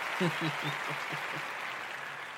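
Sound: applause and clapping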